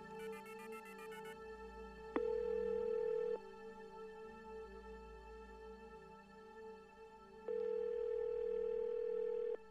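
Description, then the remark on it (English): A quick burst of redial tones is followed by a phone ringing on the line: two long, steady ring tones separated by a pause. No one speaks over them. “The phone. None of the buttons. Redial.”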